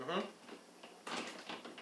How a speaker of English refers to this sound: No, it's still locked. I can't get the door open.